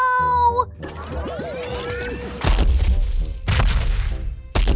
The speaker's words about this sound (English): Mighty Mila has transformed into a giant lizard. She's stomping around the ice. Boy, she looks mad.